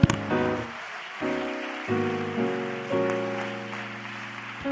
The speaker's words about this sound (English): And everyone said in Jesus' name, you may be seated. When you get seated, clap your hands unto the Lord. Out of your mouth, shout some great thing that God's done.